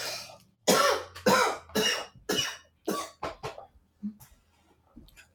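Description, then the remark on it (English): A fit of harsh coughing from a person who is sick, about seven or eight bursts in quick succession that grow shorter and quieter toward the end, with a few faint breaths between them. “I can cut out the coughing in post-production, so don't worry.”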